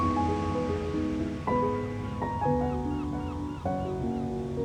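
Ocean waves wash steadily in a continuous, even hiss of surf, blended beneath sustained, slowly shifting musical tones, with no distinct individual crashes standing out.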